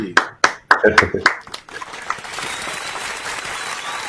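Audience applause on Chief Chat welcoming NASCAR Xfinity Series driver and Navy Lieutenant Commander Jesse Iwuji starts as a few sharp, separate claps and quickly swells into a steady, dense wash of many hands clapping together, holding loud and even to the end.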